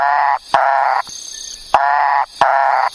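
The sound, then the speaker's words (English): A Macaya burrowing frog gives three loud, harsh, nasal calls, each a buzzy burst lasting under half a second, separated by short gaps with sharp clicks. No one speaks. “Okay, yeah, we also found the Macaya burrowing frog.”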